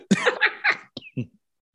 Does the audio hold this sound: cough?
yes